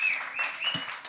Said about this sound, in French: Merci les gens qui sont ici au Maisonneuve, 4641 Sainte-Catherine-Est. Merci à Grosh, notre commanditaire. On applaudit Grosh, notre commanditaire, qui nous donne...